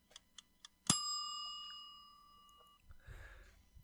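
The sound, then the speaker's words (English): A few quick, crisp ticks from a timer set to two minutes lead into a loud, bright bell ding that rings out and slowly fades over a couple of seconds, followed by a brief muffled rustle. “let me go 2 minutes on the clock for the NBA over-under odds that came out in Las Vegas yesterday.”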